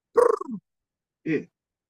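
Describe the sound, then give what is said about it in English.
A voice imitates a bird call with two raspy, squawking bursts: a longer one that slides downward in pitch, then a pause and a shorter, higher cry. “I don't know if my bird call came through.”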